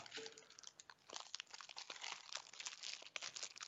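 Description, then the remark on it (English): Continuous crinkling of plastic wrapping, a busy stream of sharp crackles and rustles that keeps going for several seconds with no one speaking. “Yeah, all anyone can hear is you crinkling that wrapping.”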